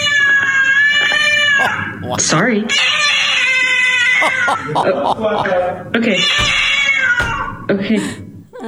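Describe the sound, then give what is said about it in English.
A cat at home lets out long, loud, drawn-out yowls, wavering meows that rise into caterwauling, with brief spoken words slipped in between the cries. “Our cat does not like the fact that we're all home quarantined.”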